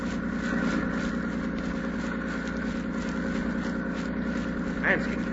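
A steady, low droning hum of a landing barge engine approaching by sea runs throughout at a constant level, with a brief higher chirp near the end.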